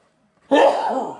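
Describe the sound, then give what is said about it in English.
A single sharp, loud sneeze bursts out of near silence, with a breathy, spray-like tail that fades over about half a second. “Bless you. Thank you.”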